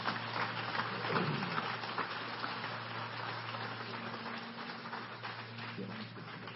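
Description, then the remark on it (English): A crowd claps steadily, a dense, even patter of many hands that holds at a constant loudness throughout, with a low hum running underneath. “Give him a round of applause if they head down.”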